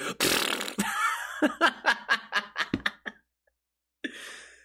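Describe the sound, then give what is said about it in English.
Someone imitates a fart with their mouth, loud: a long sputtering blast, then a quick run of short rhythmic puffs that trail off, followed by a pause and a brief breathy burst. “They'll be farting.”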